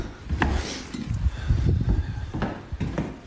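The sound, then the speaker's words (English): Handling noise as a cat food bowl is picked up: soft scraping and rubbing with a few sharp clinks and knocks scattered across a few seconds, no voices. “All right, so I'll grab the bowl.”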